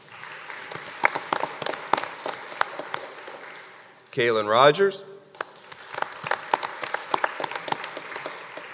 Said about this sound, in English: And how about one final round of applause? Congratulations, Junior Honors Choir members.